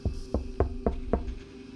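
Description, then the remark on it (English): Five heavy, booming knocks strike in quick, even succession, solid, over a faint steady hum, then all falls quiet. “Suddenly, a heavy knock frightened me as I quickly flipped my head to the doorway beside me to see my girlfriend and her auntie.”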